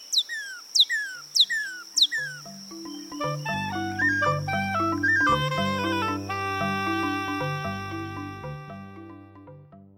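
Four quick, clear tanager song notes, each sliding sharply downward, repeat at an even pace over the first couple of seconds before music with sustained tones and bass comes in.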